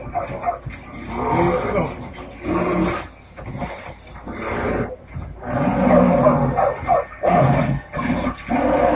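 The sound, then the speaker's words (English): A dog barks and snarls at a bear in rough, overlapping bursts while the bear's deeper growling roar answers, the dog trying to lure the bear away from a woman; the loud, chaotic confrontation continues almost without pause. “See how the dog is trying to lure the bear away from her?”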